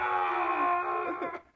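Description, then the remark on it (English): A voice imitates the anguished wailing of Cedric Diggory's father over Cedric's tombstone, from a 'Who's that Pokemon?' meme: one loud, sustained cry, wavering in pitch near the end before trailing off. “And it's his dad just yelling.”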